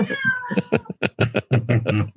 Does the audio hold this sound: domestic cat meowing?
yes